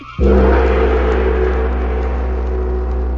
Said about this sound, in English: But the sound of the great gong tells me I must lock the book once again.